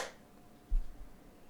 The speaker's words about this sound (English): And clap sync. 3, 2, 1.